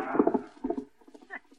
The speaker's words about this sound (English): What a steed the boy has there.